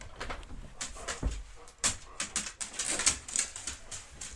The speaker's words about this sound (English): My big spurred dog, Max, heard the food bowl getting poured, so he's running down for dinner right now